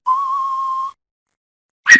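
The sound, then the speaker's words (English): A person whistles, instead of singing, a single long, steady, clear note of a western film theme for about a second. Silence follows, then a brief noisy burst at the very end. “You know, as long as we could have heard it, the whistle kind of ended.”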